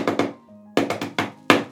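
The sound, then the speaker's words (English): A rhythmic, friendly knocking on the locked door of a hovel in a village: two quick raps, a brief pause, then four more in a row and one final knock, crisp and moderately loud with nothing else heard. “And Thorfinn comes up to the door and just gives a little friendly knock.”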